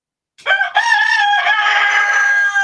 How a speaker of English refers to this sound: And the rooster agrees with me, I think. Yep.